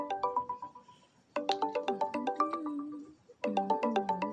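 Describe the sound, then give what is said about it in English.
A melodic phone ringtone plays in repeated bursts, a chiming tune that fades briefly between rings and starts again, clear with no one picking up or speaking. “You just said it was good to call, so why aren't you answering the phone?”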